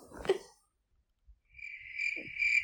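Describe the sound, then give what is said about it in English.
After a short burst of noise and a moment of near silence, a cricket starts chirping in a steady, continuous high-pitched trill that stays clear until the end. “Cricket.”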